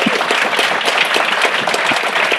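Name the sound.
audience applause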